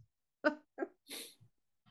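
A puppy named Isis snuffles and breathes: a few short, quick huffs followed by a sharper, hissy snort, then soft low breaths, with no talking.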